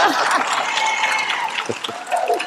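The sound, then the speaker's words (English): A crowd claps steadily for a couple of seconds, a dense, fairly loud patter of many hands with some faint voices mixed in. “You can give me my claps.”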